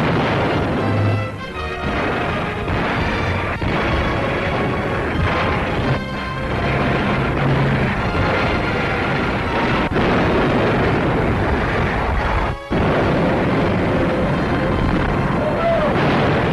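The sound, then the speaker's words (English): Dense, continuous barrage of loud anti-aircraft gunfire and explosions, with heavy booms and sharp bursts over a constant roaring din, no voices, as Japanese planes swoop in during the Battle of Midway, a naval battle in the Pacific. “In the face of terrific anti-aircraft fire, Jap planes like this one swoop close, their suicide pilots knowing full well that their battle is ended.”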